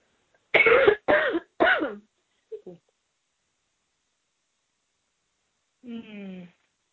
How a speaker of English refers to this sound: Pardon me, I'm going to cough again.